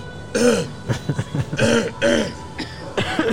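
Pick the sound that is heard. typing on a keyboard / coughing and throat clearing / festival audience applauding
coughing and throat clearing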